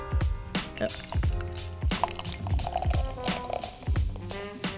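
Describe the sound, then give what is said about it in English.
A grisette-style beer pours into a glass, with gurgling, fizzing liquid broken by a series of soft knocks and splashes, over faint background sound. “Here's some pouring noises for you.”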